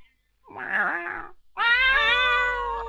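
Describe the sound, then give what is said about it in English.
A person imitates a cat meowing: first a short, wavering mew, then after a brief pause a loud, long, drawn-out meow. “Your cat got back to the camp and it meowed at you.”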